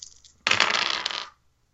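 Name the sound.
ten-sided die being rolled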